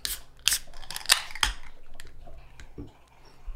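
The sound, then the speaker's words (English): A beer can is cracked open right at the microphone with a few sharp, bright metallic snaps and a short hissing burst, then quieter scattered ticks trail off. No one speaks. “Yeah, okay, let's crack them. I'll put the can right to the mic.”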